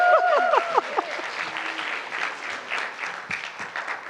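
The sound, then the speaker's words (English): An audience claps for the ten-year-old non-profit Participate in Design in a dense, steady burst of applause lasting several seconds, with a brief wavering whoop rising over the clapping at the start before the applause gradually thins. “Okay, clap, 10 years old.”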